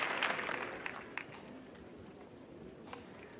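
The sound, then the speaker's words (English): An audience claps together for God in sustained applause, a dense crackling wash of many hands that starts strongest and then settles to a steady, slightly quieter level. “Come on, give God a good hand clap off.”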